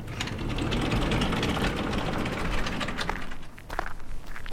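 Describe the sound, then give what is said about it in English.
A multi-tool ratchet clicks rapidly and steadily for several seconds while being used on a car, a dense, loud metallic chatter with a brief pause near the end before it resumes. No one speaks. “Where's my multi-tool?”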